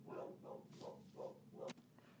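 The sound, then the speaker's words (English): Dogs bark in a quick, steady series of about five sharp woofs, muffled, with no one talking over them. “And even my dogs apparently have opinions on it.”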